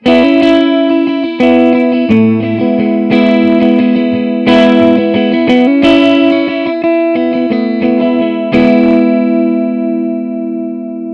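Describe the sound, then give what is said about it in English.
An electric guitar played through a subtle, natural-sounding reverb pedal plays sustained chords and picked notes, each strum ringing out smoothly with a short ambient tail, steady and fairly loud, no voices. “It's a nice sounding reverb, but is supposed to sound very natural, so it's not supposed to be anything more than a subtle touch.”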